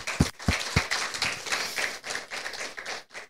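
An audience breaks into applause for the speaker's pastor, many hands clapping in a dense, steady patter that stays fairly loud for a few seconds before tapering off at the end.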